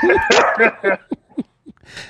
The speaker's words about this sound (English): Is that Penny? Yeah, it is. Yeah. Very good. Stop. That's a great bark on her. It's a strong bark. Stop. That's a strong bark, though. I like that.